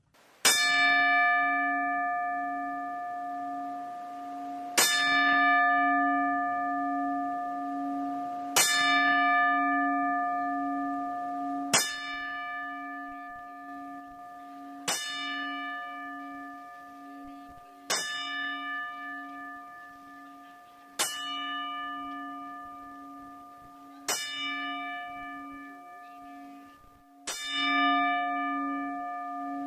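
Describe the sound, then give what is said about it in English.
A single memorial bell tolls slowly and steadily, part of ten bells honoring the passing of Daphne, about nine strikes roughly three seconds apart, each ringing out with a long, humming sustain that overlaps the next. No one speaks. “But I'd like to take the time right now to honor the passing of Daphne, if you guys don't mind, and we'll put in the 10 bells here for Daphne.”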